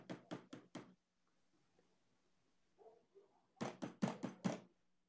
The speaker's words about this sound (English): Did you hear that? A large knock at the door. It's very loud. Like the downstairs door? Downstairs door, front door.